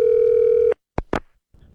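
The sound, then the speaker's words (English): A steady electronic ringback tone purrs through a phone line on an outgoing call to the GX94 Groundhog, then cuts off abruptly, followed by two sharp clicks like the call being picked up and faint line noise. “He might not actually pick up the phone this time.”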